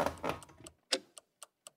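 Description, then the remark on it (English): A clock ticks in a steady, fairly quick rhythm, each crisp tick clear with silence between, after a brief denser burst of clicking at the start. No voices. “Let me check the clock.”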